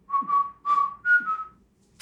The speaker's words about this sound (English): Nice. Whistle. Good.